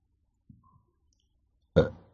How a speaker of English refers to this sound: That's a burp. It's not a fart.